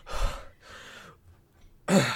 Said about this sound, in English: Following in after them is a young man, late teens, shabbily dressed, bent over backward under the sheer weight of their belongings. Young man, gasping for breath.